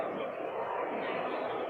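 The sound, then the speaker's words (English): A dense, steady roar of crowd chatter from more than 8,000 people outside the door of an event in Helsinki, thousands of overlapping voices blending into one continuous wash of noise, loud and unbroken throughout. “you're in an event in Helsinki with thousands of people outside the door”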